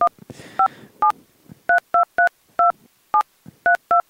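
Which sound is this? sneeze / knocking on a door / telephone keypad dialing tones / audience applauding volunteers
telephone keypad dialing tones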